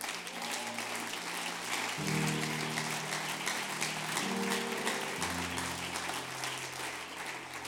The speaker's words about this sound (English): I do want to give honor to Brother and Sister Vasquez tonight. Could you give them a hand clap?